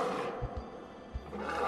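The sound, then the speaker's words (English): A lion in a gladiator arena roars, a loud, rough, rumbling growl that swells, dips briefly, then surges again over about two seconds, with no one talking. “When all of a sudden, he turns around and there's a lion right in front of him.”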